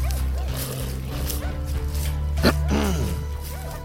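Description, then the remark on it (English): A female dog with a white patch on her chest barks and yips a few times, with one sharp bark partway through and some whiny, rising calls, all over a steady low background hum. “That's a beautiful dog you've got.”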